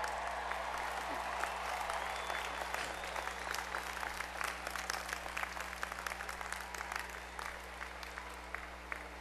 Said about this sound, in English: So I would like to ask those of you who are graduates to stand in this moment and give an Ohio State cheer for all those who have brought you here, your parents and your families and your loved ones.